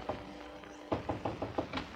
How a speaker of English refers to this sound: 1 hour later, just 30 seconds after the bride and groom reach their hotel suite, there is a knock on the door.